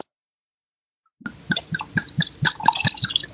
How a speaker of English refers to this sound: That sounds promising. That sounds like wine is being poured.